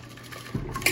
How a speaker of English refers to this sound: we're going to use a hollowed-out pineapple. I already got some ice cubes in there just to speed things up. Go ahead, strain this in.